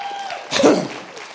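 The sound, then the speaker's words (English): A brief burst of clapping from an audience praising God swells up quickly and then thins out, many people applauding together, with faint voices mixed in underneath. “You need to clap your hands one more time.”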